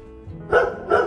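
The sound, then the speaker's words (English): A dog barks twice in quick succession, two short, bright yelps about half a second apart, moderately loud, with no voices over them; one of two barky dogs kept at a large house called Casa Los Naranjos. “Anyway, he's got two really barky dogs. And you can hear one of them right now.”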